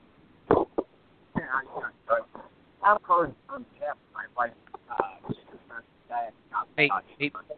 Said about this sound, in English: I know you're out there somewhere, but it sounds like you're in a bucket a quarter of a mile away from your phone.